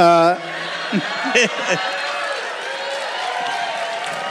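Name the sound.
audience cheering and applause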